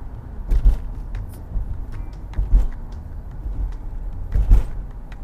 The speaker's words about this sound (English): Just like right now, I'm paying attention to traffic.